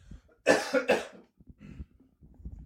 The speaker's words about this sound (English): I need a cough.